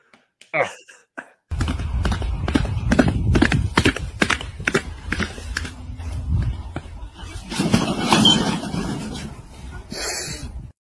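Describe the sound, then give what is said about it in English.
A pony's hooves clip-clop in a steady, even rhythm of sharp knocking strikes, followed by a stretch of rougher, murky background noise. “Like that pony was just like, what are those called?”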